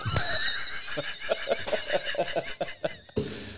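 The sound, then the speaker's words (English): A person imitates an Indian cow's moo with a regional accent, the voice wobbling in a rapid, pulsing warble for about three seconds before cutting off abruptly. “So in India, an Indian cow would moo.”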